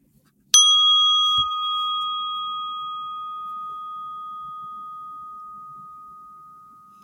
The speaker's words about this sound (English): Nice to talk. I think the market needs to hear your bell too